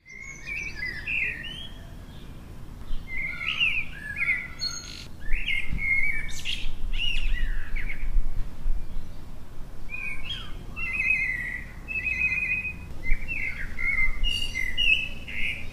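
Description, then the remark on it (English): Birdsong in a garden in Wavertree: several birds chirp and warble in overlapping bursts of bright, high phrases throughout, fairly clear, over a soft low outdoor rumble. No one speaks. “That was the tranquil sound of birds in a Wavertree garden, recorded last Sunday.”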